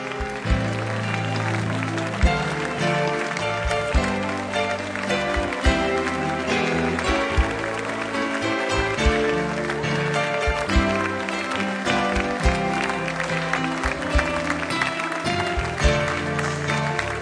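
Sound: audience clapping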